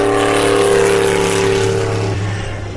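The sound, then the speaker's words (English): A Mercedes C9 Group C race car roars past, its loud, droning engine holding a steady tone before the pitch drops and the sound begins to fade as it pulls away. “Here comes another Mercedes. Is this a C9?”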